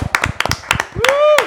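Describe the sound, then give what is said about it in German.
A small group of hosts and guests claps for the audience in a quick, uneven burst of sharp hand claps, with one voice letting out a rising whoop partway through. “Wie auch immer, Applaus hier vom Moderations- und Gästeteam für das Publikum.”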